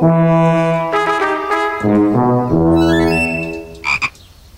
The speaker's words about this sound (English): Edith, can I introduce you to my good friend, Fergal the Frog?